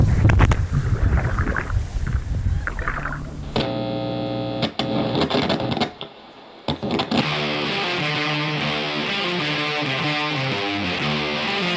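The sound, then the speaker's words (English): A boat motor on a lake rumbles over wind and water noise for a few seconds as the boat is sped up, then gives way to loud, distorted electronic tones with a steady, pulsing rhythm. “Lots of people live on this lake, Keith. There's a lot of boats out right now.”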